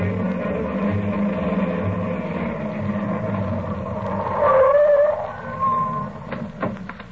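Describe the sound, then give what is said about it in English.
A car engine hums steadily as the vehicle drives along to a hospital, swelling louder near the end with a brief squeal as it slows by the ambulance entrance, followed by a few light clicks and knocks. “I'll leave the car right here by the ambulance entrance”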